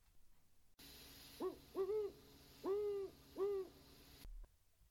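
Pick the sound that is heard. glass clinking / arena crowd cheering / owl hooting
owl hooting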